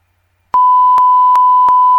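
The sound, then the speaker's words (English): After a brief silence, a loud, steady censor bleep tone starts and holds to the end, broken only by a few faint rhythmic clicks, with no voices audible. “Yeah, I guess you want me to beep that out?”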